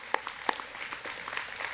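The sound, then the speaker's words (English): At Calvary church, a crowd applauds news that the board will support them financially, a few sharp, distinct claps at the start giving way to a steady, fairly soft patter of clapping hands, with no voices over it. “So yeah, you can clap for that if you want.”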